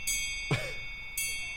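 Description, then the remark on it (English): A ship's bell in the room rings in two bright, high metallic bursts with sustained shimmering overtones, separated by a brief sliding squeak in the middle. No one speaks. “if the audience can hear that, that's the ship's bell here in the room.”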